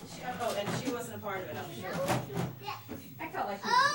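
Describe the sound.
Young children chatter and squeal in a lively stream of high-pitched voices, with occasional knocks and clatters of play in the background; a toddler cavorting with a friend at the family's house.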